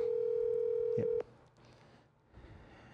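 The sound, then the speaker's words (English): A telephone ringing tone sounds while calling someone's mother and waiting for her to answer: one loud, steady electronic hum lasting just over a second, followed by quiet line noise and faint background sounds. “Come on, Mom. Answer the phone.”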